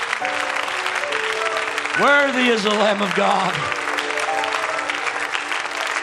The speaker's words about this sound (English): Let's give him a great hand clap of praise this morning. I believe he's worthy.